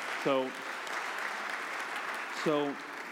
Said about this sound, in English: So we are financially healthy. If you want to, is that somebody clapping? Yeah, you can do that.